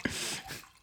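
A brief splashy trickle of wine poured from a third bottle into a glass, a soft liquid gurgle with a bright hiss that fades out within a second, fairly quiet.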